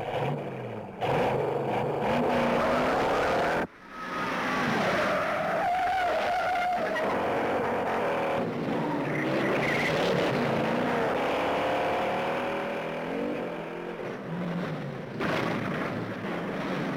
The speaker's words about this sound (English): The Chase. One of the greatest. Now, and this probably is the greatest car chase. It's a Mustang and a Dodge Charger.